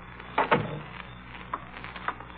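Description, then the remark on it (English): A door opens as someone comes in, with a couple of sharp latch clicks and a brief creak, followed by a few faint, scattered knocks as it settles. Nobody speaks. “Somebody's coming in the door.”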